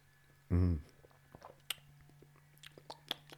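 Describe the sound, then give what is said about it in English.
Someone takes a first sip of Kraken, unmixed: a short voiced hum, then a run of faint, wet mouth clicks and small swallowing noises, with no talking. “So you get the first sip, it's smooth.”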